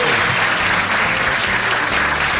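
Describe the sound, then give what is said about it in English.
An audience claps steadily, a dense, continuous wash of applause that stays loud and even throughout with no voices standing out. “a round of applause please for Mark Watson”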